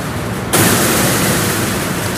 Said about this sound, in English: Those crashing noises are the doors of the elevator opening. It splits in the middle, and half the door goes in the ceiling, and half the door goes into the floor.